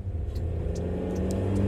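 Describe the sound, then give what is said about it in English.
The engine of White Jerry's car runs with a steady low rumble and strong bass hum, plus a few faint high ticks above it, continuous with no talking. “We did, however, take White Jerry's car.”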